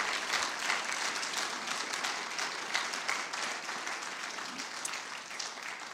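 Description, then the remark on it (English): Steady applause from a large group giving the Lord a clap offering, a dense, continuous patter of many hands clapping at once, sustained for several seconds without letting up. “Let's give the Lord a clap offering today.”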